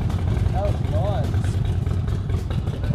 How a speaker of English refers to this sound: Hey, look at this motorbike. So we're in an alley and a garage door just opened and a guy on a motorbike just drove out.